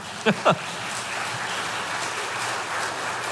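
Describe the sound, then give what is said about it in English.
An audience claps steadily in a dense, continuous wash of applause, with a couple of brief voiced shouts near the start before the clapping carries on evenly to the end. “Yes, that is worth clapping for.”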